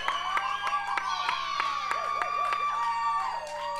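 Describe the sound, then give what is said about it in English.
A lively live audience at the Queen City Comedy Experience taping cheers, whoops and shouts over scattered claps, the many overlapping voices forming a steady, loud wall of excitement that continues throughout. “Well, for this crowd, I might need it. Yeah, we got a wild bunch with us.”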